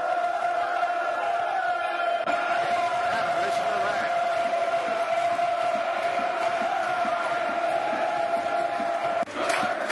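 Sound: football crowd cheering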